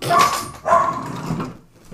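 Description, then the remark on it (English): Two sharp dog barks sound in quick succession, followed by softer yips and a whimpering trail-off, with faint background noise and no talking. “Ooh, doggos!”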